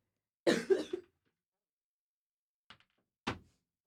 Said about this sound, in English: I hate when that happens too. You gotta cough. You can't itch.